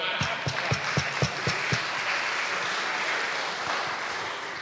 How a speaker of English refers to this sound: We already got one round of applause, but I think we need to have one.